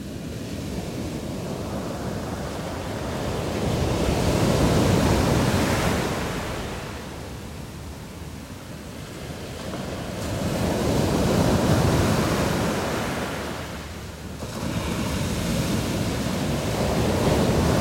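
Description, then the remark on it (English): Small ocean waves about two feet high break on a shore in a steady rhythm, each one swelling into a broad, hissing wash of surf before easing off. About three surges, alone without voices. “the sound you hear of the waves breaking is literally energy being released in the form of sound”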